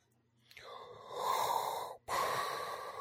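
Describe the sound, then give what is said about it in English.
A voice imitates Darth Vader's heavy mechanical respirator breathing: one long, hissing, raspy inhale followed at once by a drawn-out exhale, loud, with no talking. “He'll even skip his asthma medication so that he has the breathing.”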